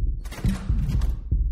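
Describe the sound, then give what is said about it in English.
A quick heartbeat sound effect: deep, muffled thumps pulse in a rapid, slightly uneven rhythm, with a faint wash of higher hiss between beats and no talking. “I mean, I think I played it cool, but my heart was beating fast as hell.”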